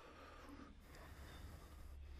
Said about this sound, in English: Generate your ujjayi breath.